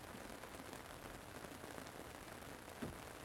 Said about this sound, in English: Hi, everybody. It's a beautiful rain here.